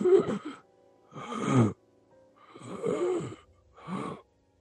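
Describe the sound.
A voice imitates the gasping breath of a wounded, crumpled painting creature: four ragged, raspy bursts of labored breathing separated by brief pauses, moderately loud, with no talking.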